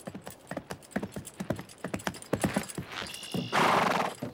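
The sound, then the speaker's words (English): A horse's hooves clip-clop in a steady rhythm, followed by a short high whinny and a loud burst of rushing, breathy noise at the end. “I want to know what kind of idiot revs his truck around a horse.”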